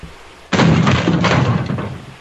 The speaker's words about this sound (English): Somebody's trying to get in my room. Okay, let me, I'm trying to hold the door shut. I don't know if somebody's... They're kicking at my door. I'm trying to keep them out.